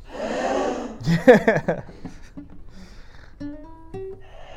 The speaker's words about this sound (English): Gasping?